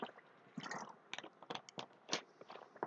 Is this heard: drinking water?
yes